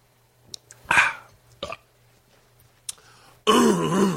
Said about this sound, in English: I got to clear my throat. And I'm not going to start with that. Let me clear my throat.